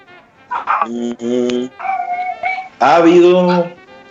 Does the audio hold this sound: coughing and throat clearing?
no